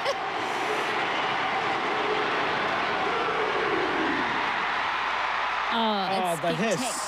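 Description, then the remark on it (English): A huge crowd of Tongan fans packing Mount Smart Stadium in Auckland sings and roars together, a dense, steady wall of voices that holds loud throughout, with wavering sung notes rising above the din near the end. “This is the Tongan crowd at Mount Smart Stadium in Auckland.”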